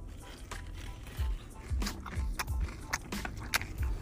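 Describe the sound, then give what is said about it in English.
Crunching as a crisp, piping-hot finger food is bitten and chewed, with repeated sharp crackly bursts every half second or so, loud, with no talking over it. “Listen to that crunch.”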